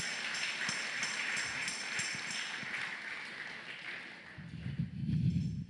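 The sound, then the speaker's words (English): An audience gives a clap offering to God, clapping their hands together in a dense, steady patter of many overlapping claps that carries on for several seconds before giving way to a low swell of voices at the end. “Let's give a clap offering once again to God.”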